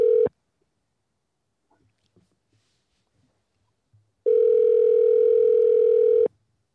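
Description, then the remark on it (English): A steady electronic ringback tone of an outgoing phone call: a short burst, a silent pause, then a longer two-second ring, clear with no talking. “If he doesn't pick up, let's leave a message.”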